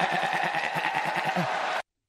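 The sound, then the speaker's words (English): A single loud goat bleat used as a 'GOAT' sound-effect drop, drawn out for about two seconds with a quavering, vibrato wobble, cutting off abruptly at the end. “I'm just saying I love that new GOAT drop.”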